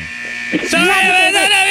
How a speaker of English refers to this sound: Timer went off.